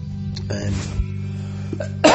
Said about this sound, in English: Sorry about the coughs